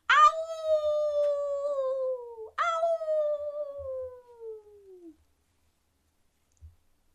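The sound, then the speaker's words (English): A human voice imitates a wolf's howl twice, each a long, sliding wail that starts high and slowly falls, the second slightly shorter, followed by quiet. “Can you make a howling noise like a big bad wolf?”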